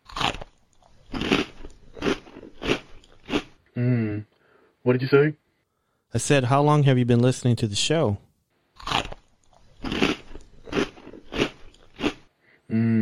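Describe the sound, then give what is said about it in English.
Loud, sharp crunching bursts of someone chewing Muchos Tacos during a phone call, repeated in an irregular rhythm between stretches of speech, with two voices talking back and forth. “No, I can just hear you crunching your food.”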